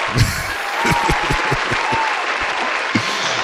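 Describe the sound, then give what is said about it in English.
A burst of hand clapping from a small group, steady, with rapid overlapping claps sustained for a few seconds and no talking. “Oh, I get a clap for that one.”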